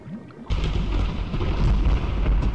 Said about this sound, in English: Oh, shit! Did you hear that? A fucking bridge! A bridge extended from... A bridge extended from the... From a lofty, like an elevated large window area in this high vaulted room.